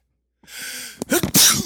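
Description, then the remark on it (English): A single loud sneeze: a breathy inhale builds for a moment, then bursts into a sharp, forceful explosive release with a hissy tail. “God bless you. Gesundheit.”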